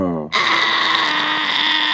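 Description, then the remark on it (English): A voice imitates a long, steady fart: one brief voiced sound, then a loud, buzzy raspberry that holds an unchanging note for almost two seconds. “So when you let it out, it was one long, consistent note.”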